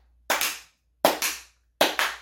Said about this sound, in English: Stand up and start clapping. Yeah. Yes, sir. And then you get the annoying loud clap, like.